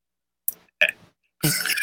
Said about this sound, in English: And you're coughing to show us how it feels.